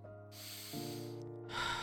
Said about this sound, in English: One last sniff. Nothing there.